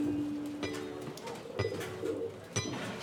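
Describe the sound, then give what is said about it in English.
A pigeon coos in low, throaty, drawn-out tones, with a few sharp taps and faint background bustle breaking in now and then. “New York City has an estimated 8.1 million people and 7 million pigeons.”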